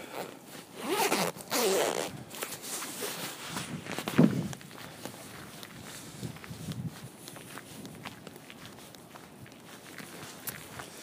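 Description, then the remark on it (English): A coat zipper is pulled up in a couple of quick, raspy strokes, followed by soft footsteps and rustling that continue quietly to the end. “Just gonna do up the zipper, the coat.”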